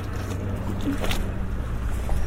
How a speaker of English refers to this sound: Right, so I'm just going to walk up this decking here, away from the sea pool. It's such a nice sound, this lapping sound. Like a faithful dog of a sea coming back and back and back to say hello.